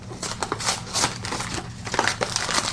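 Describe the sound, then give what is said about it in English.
A package of scone mix is torn open and handled for a waffle recipe, with continuous crinkling and rustling broken by sharp crackles, fairly loud, no voices. “And so yeah, let's make the waffle recipe, which is one package scone mix. So let's open it up.”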